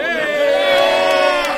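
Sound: audience cheering and applauding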